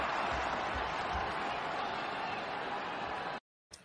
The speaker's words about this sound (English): Listen to that crowd get jacked up when he's going off the field and then coming back on the sideline, man.